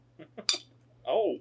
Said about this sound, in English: Oh. Ow! Damn, bro. That was just poor. How do you fuck up opening a can that badly?